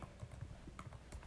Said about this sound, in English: Here's some nice typing sounds for you.